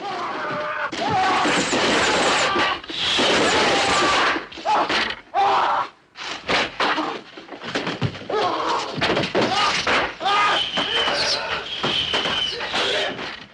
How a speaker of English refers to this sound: So that is a man being fired upon by hundreds of arrows, real arrows.